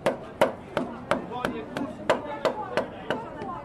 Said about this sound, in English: I mean, I can show you right here. You got a bag of hammers, sticks, mallets. You know, here's a wooden mallet. Here's one that has a sleeve of latex on it.